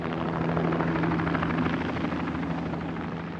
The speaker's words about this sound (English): Usually you see an indicator that the hospital will be attacked by seeing a helicopter above the hospital or an aircraft. You hear the aircraft sound flying in the sky and you keep wondering whether you will be targeted or not.